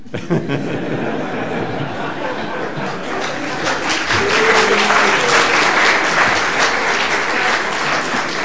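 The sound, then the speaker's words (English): A large audience at a talk with a Greek minister breaks into sustained applause after a question, a dense crackle of clapping that swells louder partway through and holds steady, with a few scattered chuckles mixed in. “If every question is going to get applause, we may reduce the time for the answer.”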